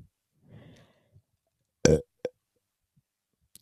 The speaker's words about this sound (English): I just burped. It was disgusting.